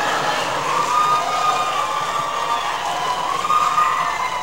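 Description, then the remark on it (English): A large audience at a debate between Donald Trump and Secretary Clinton breaks into sustained applause mixed with cheers and shouts, a dense, steady roar of clapping and voices that holds at full strength throughout, with no one speaking over it. “We want to remind the audience to please not talk out loud. Please do not applaud.”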